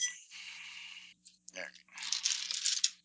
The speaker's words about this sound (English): Roll these dice. Come on.